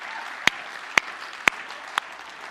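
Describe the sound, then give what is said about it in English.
Four sharp, evenly spaced claps, about half a second apart, from someone in a church audience clapping on request during an announcement, over a steady murmur of background noise; no one speaks. “Can I just get somebody to clap just for a moment that we're going to do something new, all right?”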